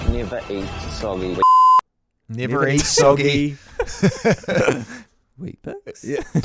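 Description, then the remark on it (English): Speech is interrupted by a loud, steady electronic censor beep lasting about half a second, bleeping out words in a clip from the TV show Celebrity Treasure Island, followed by a brief silence before talking resumes. “So we've beeped out certain words, and you've got to try and figure out what you were saying.”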